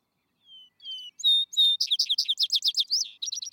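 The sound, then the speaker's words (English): A single bird sings up close: a few thin, high whistled notes, then a quick run of bright, chattering syllables repeated in a lively rhythm, clear against silence. “Return of the Birds combines a 19th century nature study with 21st century audio of the bird songs described in the charming narrative.”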